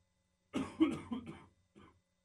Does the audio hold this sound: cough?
yes